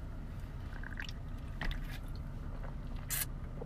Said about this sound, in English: Let's take a sip.